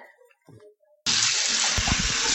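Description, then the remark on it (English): After a second of faint, scattered clinks, a tap suddenly turns on and water gushes loudly and steadily, filling a cup of water, continuing to the end. “Like she said, Mommy, bring me one cup of water.”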